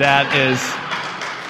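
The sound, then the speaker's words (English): A short spoken phrase gives way to a steady, dense wash of audience clapping for the speaker's parents, who are present, holding at an even level to the end. “Yes, clap.”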